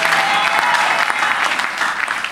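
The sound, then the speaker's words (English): An audience claps steadily during a sermon, many hands blending into a dense, sustained patter of applause at a fairly loud level without any voices. “No, those who are clapping, may God bless all of you.”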